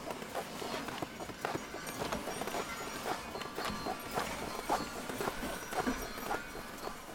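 Horse hooves clop in a steady, fairly quick rhythm as a sleigh is pulled along, moderately loud over a dense, rustling background with no voices.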